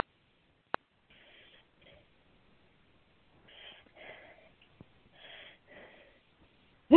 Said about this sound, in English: Somebody's breathing heavy. Did we wear somebody out? Or are they laughing so hard they can't get their breath?